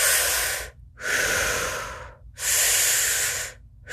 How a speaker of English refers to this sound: allow yourself to begin to roll through the conscious connected breathing, which is just in and out through the mouth.